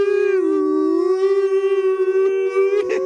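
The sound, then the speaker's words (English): A person imitates a whale call as Snoop Dogg, holding a long, loud, moaning vocal tone that dips and rises slightly in pitch for about three seconds, with no other talking. “Do the whale as Snoop Dogg.”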